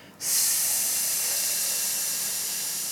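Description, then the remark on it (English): A voice makes a long, steady hissing "sss" sound on the exhale as a breathing exercise, the healing sound said to come from the chest. It starts abruptly after a brief pause and holds at an even, fairly loud level for nearly three seconds, with no talking. “Yeah, so we pass it through the chest, and then the healing sound which comes from the chest is SSS.”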